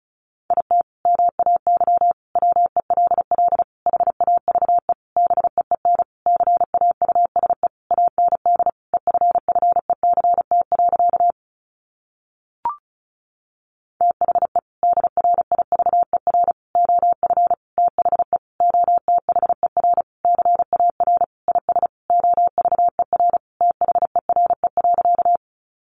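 Rapid Morse code practice sentences built from the top 1000 words, keyed at about 35 words per minute on a single steady mid-pitched tone, dense bursts of dits and dahs, with one brief pause partway through and a tiny click in the gap.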